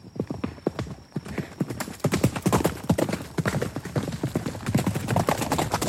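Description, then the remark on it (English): Rapid horse hooves clip-clop in a steady, accelerating gallop, loud, with dense percussive strikes continuing throughout as the horse, startled by an arrow deflecting off its reins, takes off. “The arrow deflects away harmlessly, but the horse is startled and they both take off, leaving their crew behind”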